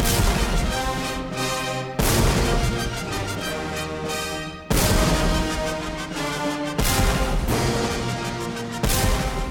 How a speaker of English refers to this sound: The recording that Antal Doradi made with the Minneapolis Symphony Orchestra used a real 1775 muzzle-loaded French cannon from the U.S. Military Academy at West Point.